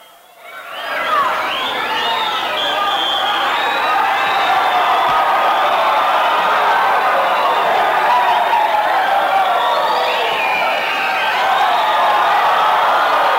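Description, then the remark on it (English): A capacity arena crowd at a wrestling match roars continuously, with shrill whistles and cheers directed at Ken Patera rising above a dense wall of voices that swells in within the first second and stays loud throughout. “Whistles from the crowd here.”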